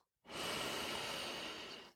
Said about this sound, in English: Breathing in and breathing up your cleansed and healed energy. And relax. I'm breathing in and up.